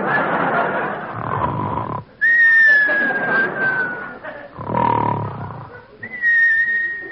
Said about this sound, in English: Well, here we go again. Now come the whistles.